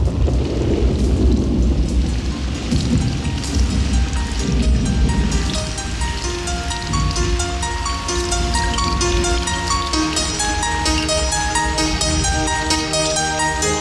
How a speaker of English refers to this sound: the 98 version had Thunder and Rain.